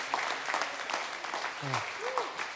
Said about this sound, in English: Just give God thanks. Give him a shout. Give him a clap. Thank you, God.